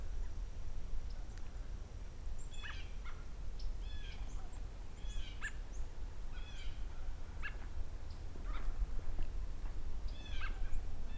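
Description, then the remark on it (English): American robins trading short, bright chirps and whinnying calls back and forth, a few birds, over a steady low outdoor rumble with no talking. “So while a little quiet here right now, I've got some American robins talking to each other.”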